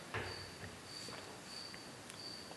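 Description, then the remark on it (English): A cricket chirps in repeated high-pitched trills at a steady pace, fairly faint against a soft background hiss with a few light taps and rustles. No one speaks. “You know, that cricket is taking me down.”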